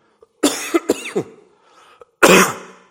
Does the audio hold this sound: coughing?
yes